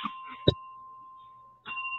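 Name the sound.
hand bell being rung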